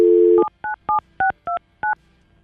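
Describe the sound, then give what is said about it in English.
A brief dial tone cuts off into six crisp touch-tone beeps, pressed at a steady, even pace as a woman's phone number is dialed. The beeps are clear, with no voices. “We have her phone number.”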